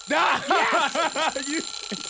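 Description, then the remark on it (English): A game timer buzzer rings out loud, a warbling electronic tone pulsing in about five quick bursts over two seconds, with no talking. “I was afraid I was going to get it on the buzzer.”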